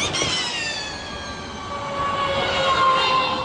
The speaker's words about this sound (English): The easier-to-bear sound of Formula E, now in its second year, with teams like McLaren and Williams helping build electric racing cars